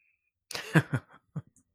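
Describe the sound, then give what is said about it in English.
A few short, rough coughs, a burst of two or three quick hacks followed by one more after a brief pause, with no talking. “Anthony Davis, he's coughing at home.”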